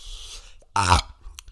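A short, throaty burp lands close to the microphone, a single rough, low-pitched belch lasting under a second, with faint background noise before and after.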